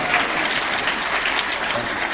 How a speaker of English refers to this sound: How about a round of applause for the cash register side?